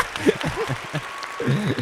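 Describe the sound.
A short burst of canned applause played from a soundboard, a steady crackle of clapping lasting under two seconds, with voices talking over it.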